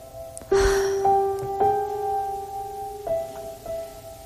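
Slow, calming background music for a guided breathing relaxation exercise, long sustained tones with a new soft note entering every second or so, and a brief breathy sound at the start. No one speaks.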